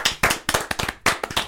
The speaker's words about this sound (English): Everyone just stops and claps. Contrarian. All right, stop and clap.